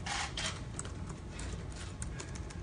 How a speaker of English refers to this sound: The little guy in the background typing away. Did you hear that?